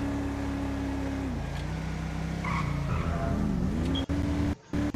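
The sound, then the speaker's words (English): A video game car engine drones steadily as the car is driven to the police station, code 2, its pitch dropping and then climbing again as it shifts, with faint tire noise and a brief cutout near the end. No one speaks. “I'm gonna drive down here to the police station, code 2.”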